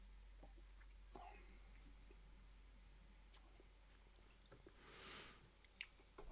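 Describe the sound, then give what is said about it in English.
Quiet sipping of whiskey by several people during a tasting, with small wet mouth clicks and lip smacks, then a longer breathy slurp near the end, with no one talking. “Well, let's all take a sip, and then I'll tell you guys a little something about this.”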